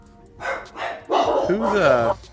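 A dog barks twice in quick, short bursts, then lets out a longer, wavering whine-like bark, loud, with no one talking over it.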